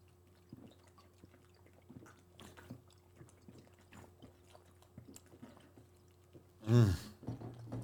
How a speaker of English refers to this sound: Don't worry, guys. We're not sucking cock. We're drinking Reef.